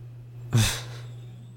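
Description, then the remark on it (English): A dog snores softly in its sleep, one brief breathy exhale close by, over a steady low electrical hum, with no voices. “Hey, quick note to the audience, my dog is sleeping in the room I'm recording this in right now. You might hear her snoring softly.”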